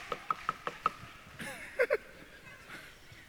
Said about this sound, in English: They knocked on the door.